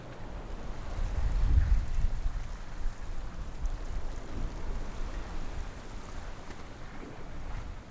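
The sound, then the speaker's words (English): Ocean water churns and washes steadily alongside a moving ship, recorded from the edge of the ship looking over the side, a broad low rumble with gusts of wind buffeting the microphone, swelling early then settling into a constant rushing wash. “Oh, let's just get some more sound from the ocean.”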